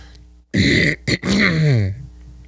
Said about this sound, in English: Because you always clearing your throat.